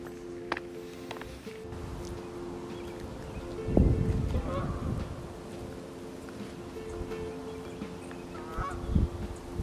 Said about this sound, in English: Some geese that just flew by. That was awesome to hear.